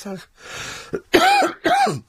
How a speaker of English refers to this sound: Is your cough due to a new blood pressure medication? No, it just made me cough again. 6 weeks. 6 weeks this cough.